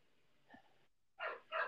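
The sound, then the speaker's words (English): Dogs bark in the background: a faint yelp, then a brief pause and two sharper barks in quick succession, with no one talking. “And I can hear the dogs.”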